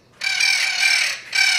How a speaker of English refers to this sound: Right now, you're hearing the mating call of juvenile spix macaws. Thanks to the Internet Bird Collection, or IBC, we now have this audio on file.